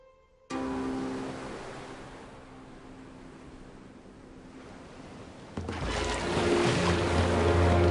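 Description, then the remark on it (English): Steady rushing of open-sea water, a broad wash of waves that swells louder and rougher toward the end, with a faint low hum underneath. No one speaks. “And as the camera starts to move across the sea, a periscope pops up.”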